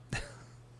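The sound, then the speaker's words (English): One short, throaty burp, a quick low guttural burst that fades within a fraction of a second, followed by quiet with a faint steady hum underneath. “I think, oh man, I just burped. That was not good.”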